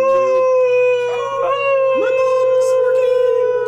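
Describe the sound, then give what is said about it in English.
A person lets out a long, sustained wolf-like howl, loud, holding a steady wavering pitch for several seconds over a faint background hum. “We should howl.”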